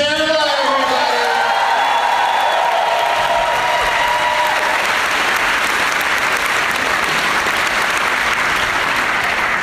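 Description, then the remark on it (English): A crowd at Sketchfest applauds as the guests are introduced, clapping steadily in sustained, loud applause, with a few whoops and cheers rising over it in the first few seconds before the clapping settles into a dense, even roar. “Well, let's meet our guests individually and give them a round of applause, starting with the party.”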